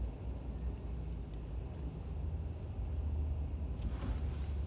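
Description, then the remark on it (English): A lifted pickup truck's deep engine and road rumble drones steadily, with a brief hiss-like swell toward the end as it goes by. No one speaks. “Thank you for driving the jacked up truck for no fucking reason.”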